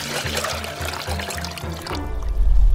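Water is poured into a glass in a steady, splashing stream for about two seconds, then stops, leaving a low muffled rumble. Fairly loud, with no voices.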